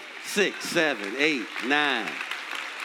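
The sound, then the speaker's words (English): An audience in church claps in a loose, scattered patter, a steady wash of hand claps running under loud, sing-song voices that rise and fall over it. “3 hand claps. Maybe 5 in church again.”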